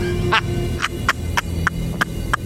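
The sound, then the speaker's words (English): A bird screeches in a rapid series of about seven sharp, high-pitched calls, evenly spaced over a low background hum, loud. “Stop with the bird screeching.”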